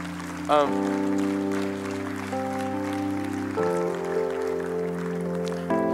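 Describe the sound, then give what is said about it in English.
A church audience gives the Lord a clap offering of praise: a steady, continuous patter of many hands, mixed with sustained organ or keyboard chords that shift a few times underneath. “Would you just give him a clap offering right now?”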